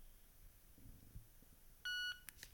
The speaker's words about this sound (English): And it's made a beep, and it should be starting up in just a second here.